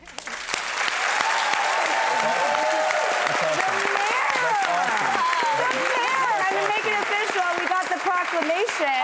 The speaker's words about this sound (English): You deserve a big round of applause.